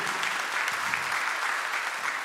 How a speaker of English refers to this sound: Come on, give them a big round of applause.